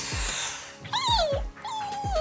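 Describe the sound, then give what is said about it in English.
A newborn cloned puppy whimpers in two high, wavering cries that slide downward in pitch, fairly loud, over a soft rhythmic thumping in the background. “The embryo is then transferred to a surrogate dog mom, and after a typical gestation period, the cloned puppy is born.”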